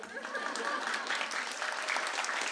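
Sustained audience applause, a dense crackle of many hands clapping steadily at moderate volume, with no voices over it, lasting the whole stretch.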